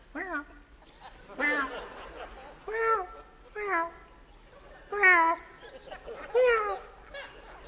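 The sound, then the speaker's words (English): A person imitates a cat, letting out about seven drawn-out, wavering meows in a steady series, each separated by a short pause, clear. “Cats used to keep me up in the military. There was one cat outside of our bunk.”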